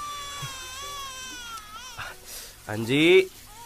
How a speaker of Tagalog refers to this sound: Ba't umiiyak yung bata? Si baby kasi.